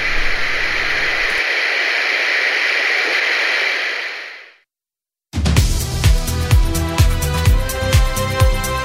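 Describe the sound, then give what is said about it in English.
A steady, loud wash of hissing radio static fills the first four seconds, then fades out into a brief silence before rhythmic music abruptly starts. “Your listening choices. Us? Or static.”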